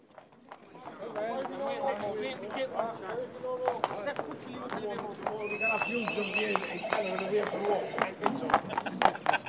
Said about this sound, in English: Today is the annual horse fair. It's a huge tradition here. It's one of the oldest fairs, if not the oldest, started back in the 1600s. The street in Banagher is quite narrow anyway, but on fair day like today, it's closed off